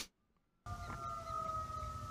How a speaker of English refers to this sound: And the audio will sound extremely weird. Some sirens right there, and at the very end you'll hear this.